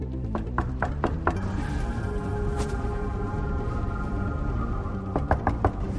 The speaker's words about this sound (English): I knocked on the door.